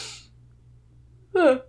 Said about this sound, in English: Excuse me. I'm sorry. I keep yawning on podcasts.